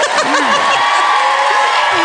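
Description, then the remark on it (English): A loud, dense crowd noise fills the whole moment, with scattered voices whooping and cheering over a steady wash of sound, like an audience erupting in applause. “Clap for George's.”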